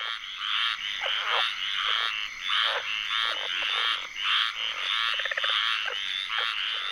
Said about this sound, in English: … captured this tree frog serenade in Apalachicola, Florida, for their ….